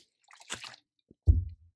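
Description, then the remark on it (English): A quiet sip of water by a speaker: a brief wet slurp followed by a soft, low gulp as it's swallowed, with no talking. “Some more water.”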